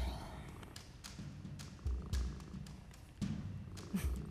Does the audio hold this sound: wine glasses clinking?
no